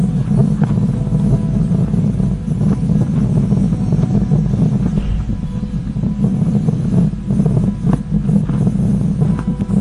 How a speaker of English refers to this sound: We've even got the noise of the helicopter. This is the Perseverance helicopter on Mars.